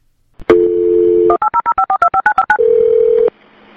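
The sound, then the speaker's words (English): A steady telephone dial tone is followed by a quick run of about eleven short, evenly spaced keypad beeps as a number is dialed for a call to the State Police, then another steady tone; clear, with no talking. “There's a lot of different phone calls you might have to make or your coworkers have to make, so there's a lot of behind the scenes going on.”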